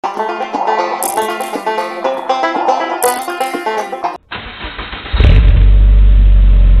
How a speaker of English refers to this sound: Told you, it was probably just vapor lock. Vapor lock? Yeah. Is that a real thing? Well, the car started.